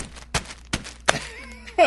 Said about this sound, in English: But it's called Pushu Pushu. It's basically ramen, and you're not supposed to cook it. You're just supposed to smash the ramen in the bag. I'm going to do that with my microphone.